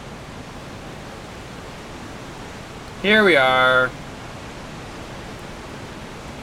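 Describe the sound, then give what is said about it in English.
A waterfall at the back of a large room rushes steadily throughout, a dense, even roar of water. Partway through, a voice briefly speaks over it. “I think it's way toward the back of the room where there's this waterfall.”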